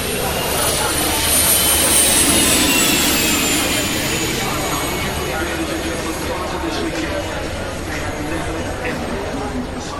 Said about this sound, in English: However, we'll start with the sound of the astonishing MTT Street Fighter, a motorbike equipped with a Rolls-Royce Allison gas turbine. Yes, a jet engine from a helicopter. On a bike. Bonkers.